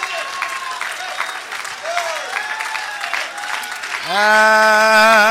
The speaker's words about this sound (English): Come on, let's clap our hands to him.